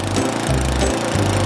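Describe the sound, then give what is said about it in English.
A lawnmower engine drones steadily, its low rumble pulsing unevenly as the motor chugs, with a broad mechanical roar filling the short stretch and no voices present. “the sound of a lawnmower.”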